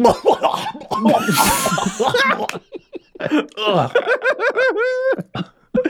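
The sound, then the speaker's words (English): A voice acts out coughing and sputtering out a healing potion being poured into the mouth, with a harsh breathy burst followed by gurgling, choking noises and some laughter-like vocal sounds, fairly loud. “You cough out half of the healing potion, but you receive 6 points in healing, bringing you back up from zero.”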